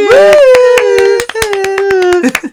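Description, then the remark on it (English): Sharp, fairly steady hand claps ring out for a couple of seconds while a voice holds a long, bright whooping cheer over them, a short round of applause. “Round of applause.”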